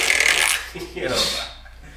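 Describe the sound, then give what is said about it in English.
A person blows a mouth fart, a wet, sputtering raspberry that opens with a hissy, breathy burst and slides into a lower, buzzing flutter before trailing off after about two seconds. “That's a mouth fart.”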